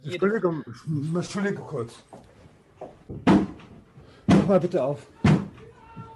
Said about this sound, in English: And on the live stream, German police bust down his door. They raid his home. They arrest him.